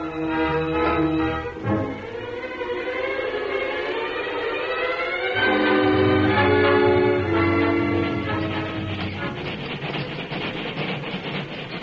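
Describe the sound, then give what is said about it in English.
A train of only an engine and a caboose rolls westward along new rails with a heavy low rumble and a loud, sustained whistle-like wail that rises and shifts in pitch, steady for the whole stretch. “It was a caboose bounce, a train composed only of an engine and a caboose that moved westward on new rails.”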